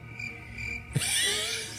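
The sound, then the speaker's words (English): A cricket chirps in a bright, high-pitched, continuous trill that bursts in abruptly after a brief quieter moment, loud, with no voices. “I got my crickets. They chirp.”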